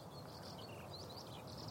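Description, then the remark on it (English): A bird sings continuously while hovering overhead above a field of high wheat by a farm track in the east of England, UK, on a sunny, fresh day with clouds: a thin, high, warbling stream of notes, fairly faint over a steady low rumble of open-air background noise. “There's the techno bird”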